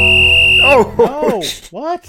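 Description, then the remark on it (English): A loud, steady whistle blast lasting under a second, a sharp high tone with a buzzy edge, cut off abruptly as a voice breaks in with exclamations. “That's the greatest whistle of all time.”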